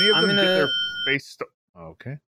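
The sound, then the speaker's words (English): A steady, high-pitched bell, the first bell of the show Off Topic, rings continuously for about a second beneath loud talking, then stops while people keep speaking in short bursts. “That was the first bell.”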